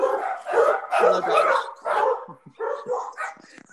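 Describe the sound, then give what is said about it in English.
Several dogs, from a household of about eight, bark excitedly after a knock on wood, in overlapping, rapid bursts, loud, with a few yips mixed in and no one talking over them. “Okay, I knocked on wood that we actually are done with Donald Trump, and I forgot that I have like 8 dogs here, so that was a mistake on my part.”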